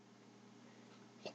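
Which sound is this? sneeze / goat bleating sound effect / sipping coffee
sneeze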